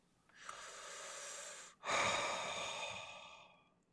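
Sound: heavy breathing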